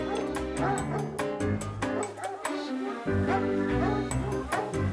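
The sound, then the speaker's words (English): A large pack of about 70 hounds, half English foxhound and half French Poitou, barks and bays excitedly at feeding time, anticipating red meat; many overlapping voices form a dense, continuous clamor with yips and whines mixed in, loud throughout. “The hounds, half English foxhound and half French Poitou, get worked up knowing red meat is on the way.”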